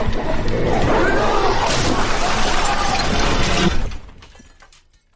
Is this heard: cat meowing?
no